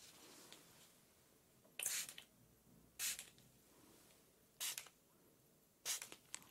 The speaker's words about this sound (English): The first one. Is this calming mist? It is full of antioxidants. It smells the most delicious. Close your eyes as I spray.